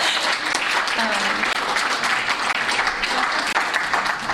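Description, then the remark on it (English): An audience claps steadily at the end of a speaker's formal remarks about a book, a dense, sustained wash of applause with no pauses, fairly loud throughout. “And I'll take applause. I'm quite happy to have it.”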